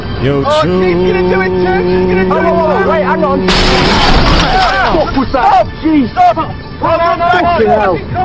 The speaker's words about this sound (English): What the fuck just happened? Damn! Car accident? Yep. I think they crashed because they were too busy paying attention to the dudes.